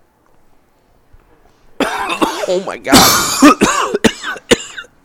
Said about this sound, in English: Oh, my God. I tried to hold off on the cough. Oh, my God. Oh, God. Well, yeah. That was eye-watering.